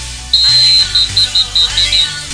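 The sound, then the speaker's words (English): A shrill, high-pitched whistle gives one long blast, then a run of about six short, rapid toots, over a low humming background. “Where's my whistle?”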